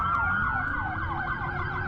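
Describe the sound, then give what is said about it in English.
Police car sirens wail in a rapid, repeating up-and-down pattern, loud and steady over a low rumble of traffic, as dozens of police cars arrive at Bayside by the mall in Miami at night; no one speaks. “All the, these are all cop cars, esto es folks.”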